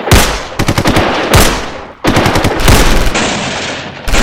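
Loud bursts of gunfire from cowboy-looking gunmen demanding money at the front door, with rapid clusters of sharp shots and big booming blasts, two main volleys with a short lull between, and no voices.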